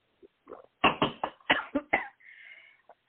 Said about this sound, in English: I'm so sorry. It's bad okay. To be coughing on the radio.